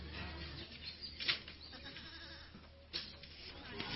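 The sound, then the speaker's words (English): Goats bleat a couple of times, short, over a steady low outdoor rumble with no one talking; they are livestock cared for by students as part of a school program. “They're given goats, chicken, and pigs.”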